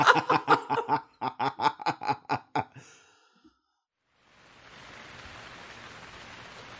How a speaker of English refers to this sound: Riley Beers, a young man with curly brown hair, steps out of the crowded downtown bar. Rain pours across the outside street, and Riley pulls his jacket tight.